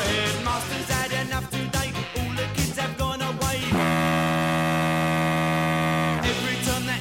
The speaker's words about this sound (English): If you can work out what's going on underneath this foghorn. Have a listen.